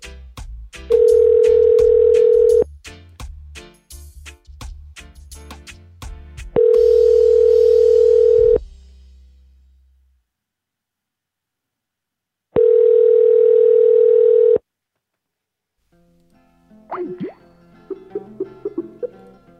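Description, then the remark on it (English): A loud, steady telephone dial tone sounds in three separate bursts of about two seconds each, with clicking and handling noises in between and faint warbling beeps near the end. “Dialing that phone and putting a fucking recorder up to it so you can hear it.”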